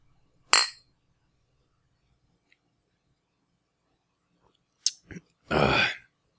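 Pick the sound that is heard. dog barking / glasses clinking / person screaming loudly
glasses clinking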